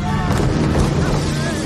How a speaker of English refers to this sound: Those are cool speedboats. Yeah. My friend Matt Garcia, who grew up with boats, said, no, that's a very specific, very fancy, but I can't remember the name of what they actually are.